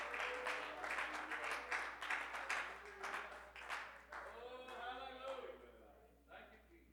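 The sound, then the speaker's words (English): An audience claps hands in praise to the Lord, a dense, loud burst of many overlapping claps that fades after a few seconds as a voice begins speaking over the dwindling applause. “Oh, can we give the Lord a hand clap of praise?”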